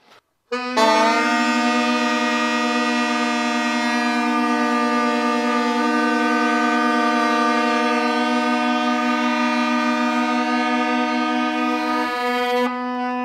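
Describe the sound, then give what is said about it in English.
A wind instrument holds its highest note with no keys pressed down, one long, steady note for about twelve seconds, loud and brassy with a rich, buzzing tone, then stops abruptly. No one speaks. “All right, well, let's try with the highest note without any keys pressed down. Let's see what that sounds like.”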